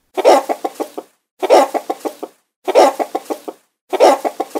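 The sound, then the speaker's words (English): A chicken clucks loudly in four evenly spaced bursts, each opening with a harsh squawk and trailing into a quick run of short, choppy clucks. No one speaks. “Yep, you've got it! It's a chicken!”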